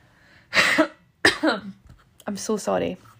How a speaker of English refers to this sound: I'm so sorry about the coughs.